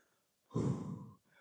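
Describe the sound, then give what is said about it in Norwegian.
A single breathy rush of air blown through two parted fingers held in front of the mouth, fairly strong, lasting under a second before fading into quiet. No one speaks. “Luftstrøm, fingrene fra hverandre, og blåser, ikke sant?”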